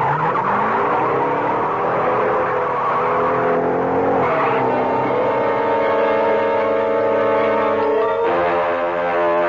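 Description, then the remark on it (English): A getaway car's engine roars and revs hard as it drives off, its pitch rising and sliding as tires squeal, then it surges again with a sharp gear change near the end. The sound is loud and continuous, with no talking. “Get behind the wheel”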